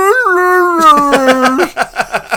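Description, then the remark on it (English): A person imitates a howling dog, like the dog in season one of Rick and Morty before it could fully talk: a drawn-out, slightly rising howl that holds steady, then breaks into a quick series of rhythmic yelping pulses. “I would sound like the dog before he could fully talk in season one of Rick and Morty.”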